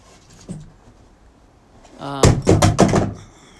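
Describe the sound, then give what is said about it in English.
After a faint tap, an object knocked by a dog tumbles off a couch and hits the floor with a cluster of loud thuds and clatters in quick succession, then settles. “Sorry, my dog knocked something off the couch.”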